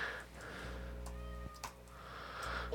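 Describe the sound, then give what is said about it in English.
A faint cat meow sounds right outside a door, muffled behind it, over a steady low background hum with no one talking. “There's a cat. meowing right outside the door.”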